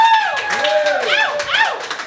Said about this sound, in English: I prefer restrained applause, but wild it will work.